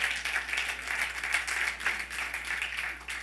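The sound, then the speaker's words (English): An audience claps together in a steady, dense burst of applause, many hands sounding at once with an even, sustained patter throughout. “Now, don't clap unless you're going to do it.”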